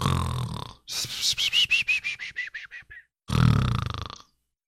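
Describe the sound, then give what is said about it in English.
A long, croaky burp rumbles out in a string of rapid pulses that drop in pitch, bracketed by rough breathy bursts before and after. Fairly loud, with no talking. “And I just burped there in this.”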